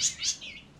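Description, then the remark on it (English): Baby birds in cloth bird cages chirp to be fed in a quick run of three thin, high-pitched calls, moderately loud, with no one talking. “And every half hour or so, I have to remember to feed the little ones.”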